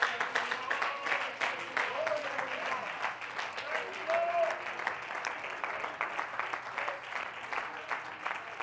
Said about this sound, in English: Clap your hands. Clap your hands. Clap your hands.